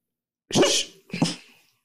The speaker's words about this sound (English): No barking, Gizmo.